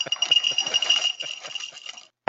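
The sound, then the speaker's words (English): Dry Lucky Charms-inspired cereal pours from its box into a bowl with a steady rattling patter of many small clicks and tinkles for about two seconds, then stops abruptly. “I'm going to pour some of it into this handy bowl I have right here.”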